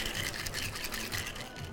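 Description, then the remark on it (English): A cocktail shaker holding a margarita mix of tequila, orange juice, Sprite and sweet and sour is shaken hard, giving a fast, steady rhythmic rattle of ice sloshing back and forth, continuous and fairly loud throughout with no talking. “So I'm going to shake that up here.”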